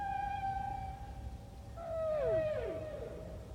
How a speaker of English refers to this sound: And the magic of the actual whale sounds are profound, too. Low-frequency sound can carry, they think, maybe the 3,000 miles. And whale songs that are unique, and they repeat them, and pods have their own sounds.